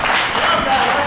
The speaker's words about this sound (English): Golf clap.